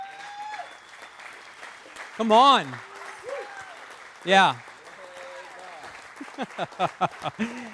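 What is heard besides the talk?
audience clapping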